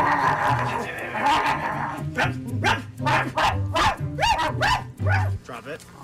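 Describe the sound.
A dog barks repeatedly in quick, sharp, loud bursts, with a person's voice mixed in among the barks, reprimanding the dog.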